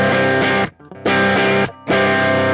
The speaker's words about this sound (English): Okay. Yeah, this is probably not the right kind of thing to demo a reverb in, but what...